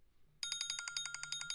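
A phone alarm ringtone bursts in after a brief quiet moment: a loud, rapid trill of bright bell strikes, with a low buzzing vibration humming underneath.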